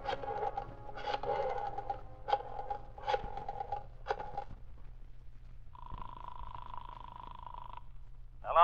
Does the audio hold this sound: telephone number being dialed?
yes